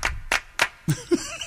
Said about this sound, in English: This goes on for about 6 minutes. There's a controversy about how many claps are in this?